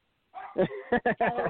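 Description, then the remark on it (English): A dog barks and yips several times in quick succession, fairly loud, with a whiny, tonal edge between the sharp bursts. “Gotta love dogs, right?”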